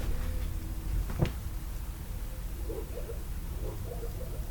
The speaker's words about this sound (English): Fucking raining again? It is raining. Can you hear that?